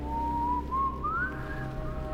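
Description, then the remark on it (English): A young boy whistles a single tone that glides slowly upward in pitch, steady and fairly clear, over a low, dense background rumble with no talking. “To Clancy's horror, the young boy begins to whistle.”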